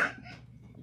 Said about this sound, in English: I sneezed. I'm Bless sorry. Bless you. Gesundheit. Oh, salute.